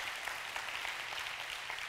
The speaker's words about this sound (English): Can I get a hand clap of that? Amen.